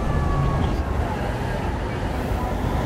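An ambulance siren wails faintly in a steady, drawn-out tone as the ambulance arrives at a hospital emergency department, partly buried under loud, rumbling street and engine noise.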